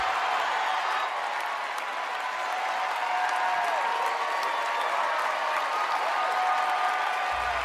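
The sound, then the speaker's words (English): A large crowd at the Tony Awards gives a standing ovation, sustained thunderous applause with cheering mixed in, a dense steady roar of clapping that holds at full strength for the whole stretch without fading. “And then I love how they stand and they cheer, and then he goes like this.”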